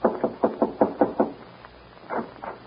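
A quick series of about seven sharp knocks on the wooden door of a lamp-lighted ranch house at night, followed by a short pause and two more knocks, fairly loud with no voices.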